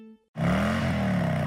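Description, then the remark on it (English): A 2016 Harley-Davidson Rogue Glide Special motorcycle with a high-output twin-cam 103 engine bursts into a loud, rumbling rev after a brief moment of silence. Its deep, throaty pitch climbs slightly and then holds steady. No one speaks. “The 2016 Rogue Glide Special. With a powerful, high-output twin-cam 103 engine, big-time braking power, and Harley-Davidson Project Rushmore technology, from fairing to fender.”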